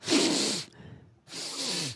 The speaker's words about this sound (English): How do you spell the sound of sniff? Well, I'm going to demonstrate it first.